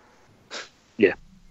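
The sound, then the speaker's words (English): A deliberate, put-on cough while saying "rerolls": a short breathy burst followed by a louder, voiced hack, two quick bursts in total with quiet on either side. “That's why I coughed and said rerolls, because you're definitely getting two smites off a turn at least.”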